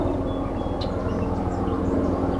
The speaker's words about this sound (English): Uh-oh. Helicopter.